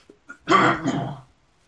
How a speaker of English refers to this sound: Hold on. Let me clear my throat, guys.